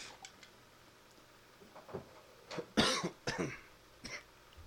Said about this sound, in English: Got a cough to get off.